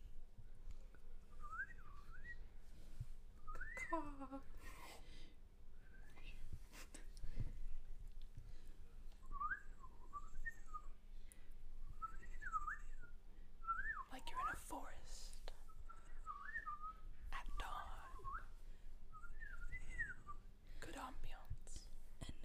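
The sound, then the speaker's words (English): Someone whistles an imitation of a bird call, a string of short warbling, up-and-down phrases repeated over and over at a soft level, with breathy background noise throughout. “And now we will do bird noises.”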